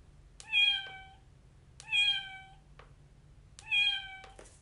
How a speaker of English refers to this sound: This is a baby cat. She is called a kitten. She is very playful and loves to chase her toy mouse. Can you meow like a kitten? Let's touch the kitten's fur and hear her meow, meow.